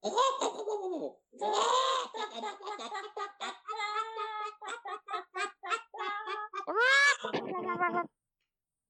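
Chickens disturbed in their sleep squawk and cackle loudly in a flurry of agitated calls, with high, wavering squawks and short clucks tumbling over one another for about eight seconds before falling silent.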